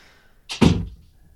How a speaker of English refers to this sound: I'm just going to close the door again. It keeps opening. The wind keeps opening.